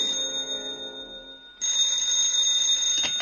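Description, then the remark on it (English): A telephone bell at headquarters rings loudly and continuously at 2 o'clock in the morning, a bright, shrill metallic jangle that swells even louder partway through, with no voices present. “And then a bell exploded. At 2 o'clock in the morning, it couldn't stand it anymore, and it exploded.”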